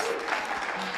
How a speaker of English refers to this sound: So give that a round of applause. Let's get all Pentecostal, yeah.